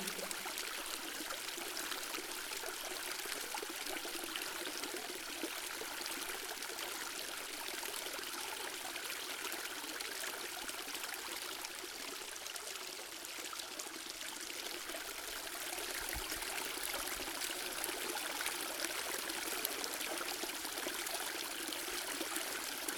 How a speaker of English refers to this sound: The natural sounds of the water crashing down like rain, feeling it against your body.